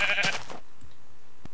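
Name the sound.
sheep bleating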